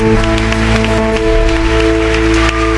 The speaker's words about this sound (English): Come on, people, give Jesus a clap.